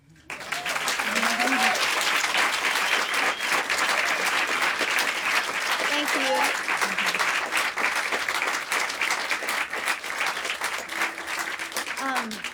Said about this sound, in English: And also another round of applause for my beautiful, beautiful guitarist